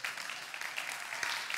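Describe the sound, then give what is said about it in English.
A crowd applauds steadily, many hands clapping in a dense, even patter with no individual claps standing out, sustained at moderate volume and without any voices. “And then I killed the clapping and said it should have been twice that much.”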